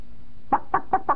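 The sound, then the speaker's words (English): A voice imitates a chicken clucking: five short, evenly spaced clucks in a quick steady rhythm, fairly loud, with no other talking. “That's a chicken doing something else.”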